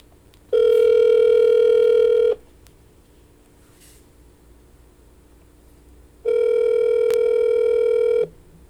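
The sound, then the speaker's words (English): A phone line ringing on the caller's end as a call is placed to someone: two long, steady electronic ring tones, each about two seconds, separated by a quiet pause. Clear, with no voices. “We're going to make a phone call.”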